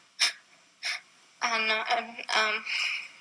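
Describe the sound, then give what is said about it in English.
A voice imitates an unresponsive infant lying in a crib gasping for breath: two short, sharp breathy intakes, followed by strained, voiced gasping noises, fairly loud. “He was gasping for breath.”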